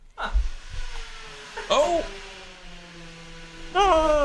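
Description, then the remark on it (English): Drilling: a steady, whining motor tone over a low hum, with two louder bursts where the pitch swoops up and down, one midway and one at the end. “It's drilling of some sort.”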